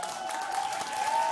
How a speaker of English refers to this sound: Guys, that was a bit of a generous clap. You never clap like that for me. Take that back a bit. Let's do it again, but a bit less this time, okay?